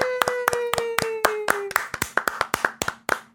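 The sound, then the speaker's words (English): Steady, brisk hand clapping at the end of a show, around fifteen sharp claps at an even quick pace, with a faint sustained tone humming beneath the first half. “If I don't stop clapping, the show doesn't have to end.”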